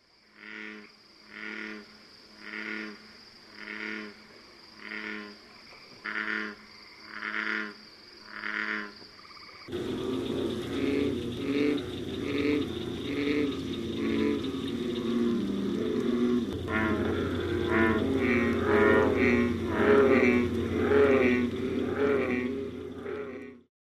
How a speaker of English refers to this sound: Last to begin to call are the large American bullfrogs, with the male sounding a deep, vibrating bass note.